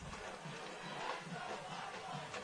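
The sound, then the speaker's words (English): A large crowd of football fans at Crozier Keystone stadium roars and cheers in a steady, dense wash of noise, sustained and fairly loud throughout with no clear breaks. “The crowd comes alive here at Crozier Keystone”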